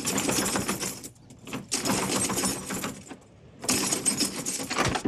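Metal keys rattle and jangle in a door lock in three vigorous bursts separated by short pauses, loud, with a bright, clattering metallic texture and no talking.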